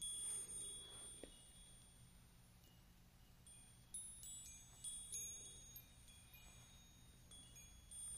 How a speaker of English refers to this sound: Oh, what's this? Oh my gosh, how cute. Magical little chime.